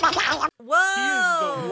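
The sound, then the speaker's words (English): A brief burst of speech cuts off, then a loud duck-quack censor sound effect takes over: one long, nasal, buzzy honk with a slightly wavering pitch. “We're going to have to quack that out”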